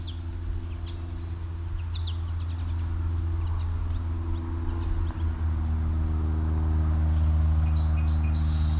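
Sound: cicadas buzzing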